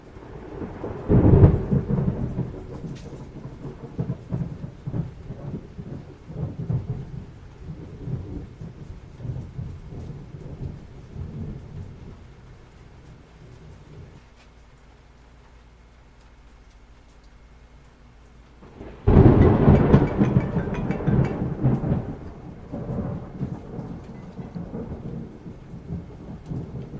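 A thunderstorm with steady rain and two heavy rolls of thunder, one at the start and a second, louder burst later that rumbles on; no voices are heard.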